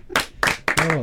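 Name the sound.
applause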